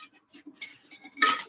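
A big cup of water clinks and knocks against a hard surface in a few quick, bright, ringing taps while someone takes a sip, ending with a louder rattling clatter. No one speaks.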